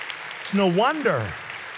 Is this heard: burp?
no